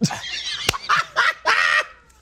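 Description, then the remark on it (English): A run of loud, nasal honks, goose-like in tone, with three main blaring calls in quick succession after a short sharp click, with no talking over them. “That was like a goose call.”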